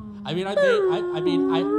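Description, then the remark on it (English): A person imitates the whale song from the Star Trek film with a fairly loud, sustained moaning tone that slides up and down in pitch for a couple of seconds, with no words. “I'm receiving Whale Song.”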